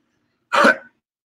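A single short, harsh cough bursts out, lasting under half a second, then silence. No one speaks.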